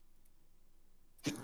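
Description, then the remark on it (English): A single sharp, loud sneeze bursts out suddenly after a stretch of near silence, a harsh, breathy blast at the very end. “Bless you.”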